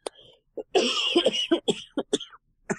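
A burst of harsh coughing, a long rasping fit followed by several shorter coughs in quick succession, with brief pauses between them.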